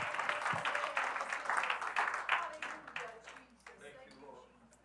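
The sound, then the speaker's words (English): A seated church audience claps their hands together in a dense, steady burst of applause that holds strong for several seconds before thinning out and fading toward the end. “Can you give a hand clap today as you're seated today?”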